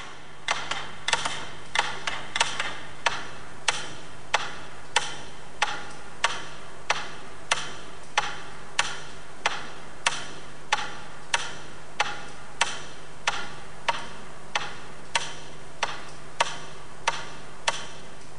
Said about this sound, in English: Eventually, there are only a handful left ticking, and then just one final metronome.